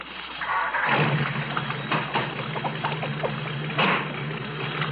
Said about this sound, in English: Start the car.